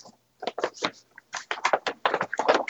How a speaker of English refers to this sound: I love we get the rustle of paper and everything.